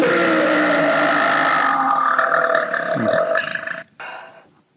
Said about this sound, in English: Okay. She's the burp champ. Air in my belly.